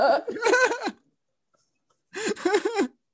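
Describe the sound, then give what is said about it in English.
A person imitates a goat, letting out two quavering, nasal bleats with a wobbling pitch, separated by a second of silence. Both are fairly loud and stand alone, with no talking. “That was a pretty good goat noise.”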